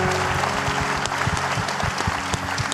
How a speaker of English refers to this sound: Happy Father's Day to these men. Can you give them a big round of applause real quick?